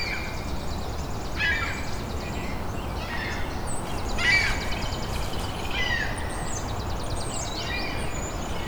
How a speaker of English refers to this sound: Lots of ring-billed gulls.